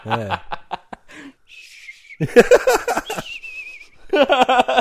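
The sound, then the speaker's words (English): A voice imitates a nose whistling while talking, with thin, high, wavering whistle tones, twice, each about a second long, between bursts of laughter and chuckling. “Nose whistle, and you're talking, and you go.”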